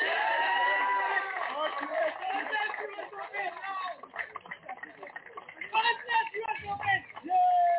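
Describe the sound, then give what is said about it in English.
A crowd at the U.S. Open cricket tournament cheers and shouts for the 2021 champion team in a steady, dense roar of many voices, with bursts of whooping and what may be scattered clapping, holding loud throughout. “Give him big noise for Let's Play U.S.”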